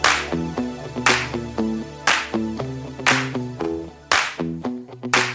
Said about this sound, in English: Wow. I'm going to start a slow clap in my bedroom by myself and see if anyone joins in.